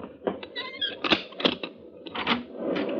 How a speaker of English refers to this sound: For the next thing I knew, it was past noon, and someone was pounding on my door. Hey! Anybody home? Just a minute. I'm coming.